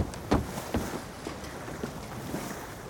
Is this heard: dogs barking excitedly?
no